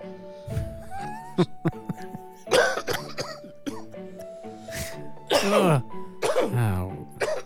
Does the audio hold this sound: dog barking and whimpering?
no